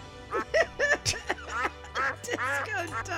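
A rapid run of loud, nasal duck quacks, about eight in quick succession, clear, with a low steady hum joining underneath partway through.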